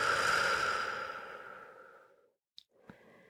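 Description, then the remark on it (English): A long, breathy exhale through the mouth during a seated meditation breathing exercise, after an inhale through the nose, strongest at the start and trailing off over about two seconds, followed by a brief quiet pause and a couple of small clicks. “Inhale through your nose. And exhale through your mouth.”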